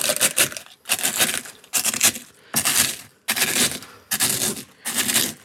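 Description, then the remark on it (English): Potato chips being crushed in a mortar and pestle as a crunchy topping for mac and cheese: loud bursts of brittle crunching and crackling, repeating in about six rhythmic grinding strokes with short pauses between. “I've never actually crunched up potato chips in my mortar and pestle, but it's working very well, I must say.”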